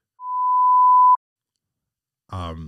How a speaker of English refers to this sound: Let's bleep this.